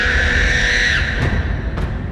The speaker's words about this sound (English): Until, that is, a young dwarven child awoke from its nap and looked up from its mother's bosom at the body of the snake. It let out a high-pitched child's scream.